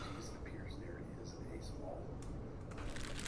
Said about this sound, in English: It appears there is a small rodent of some kind in this linen closet. It appears to have burrowed into the corn husk.